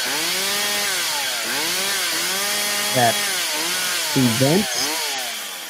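A chainsaw cutting down a tree drones and revs throughout, its pitch rising and falling in repeated surges, with a few rough bursts that sound like the blade biting into wood. No voices are heard.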